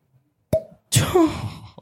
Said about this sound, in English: We're going to let Ryan do the cork pop.